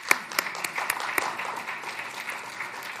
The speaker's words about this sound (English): And I think that deserves a round of applause as well.